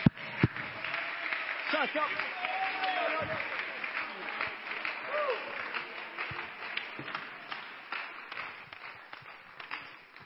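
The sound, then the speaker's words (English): A crowd claps hands steadily throughout in thanksgiving, a dense, continuous patter of applause with voices calling out and rising tones mixed in beneath the clapping. “Oh, come on, let's clap our hands just a little louder.”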